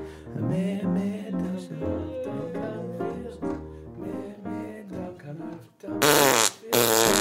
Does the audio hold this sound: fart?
yes